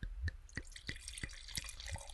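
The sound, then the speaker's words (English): Wine glugs from a bottle into a glass in a steady run of regular liquid pulses with a bright ring, about three per second, with no voices. “That's a duck fat pour.”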